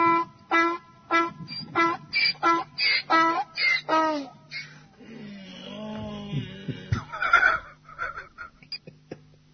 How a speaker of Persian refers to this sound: الاغ های بینوا از دست بسیجی ها آسایش ندارن، صدای الاغ هم از دست بسیجی در اومده. ظاهرن کل کار یومیه این برادر اینه که ساندیس بخوره و ارکستر الاغ ها رو رهبری کنه. به هماهنگی کامل بین صدا و حرکات موزون این برادر بسیجی رو توجه کنید.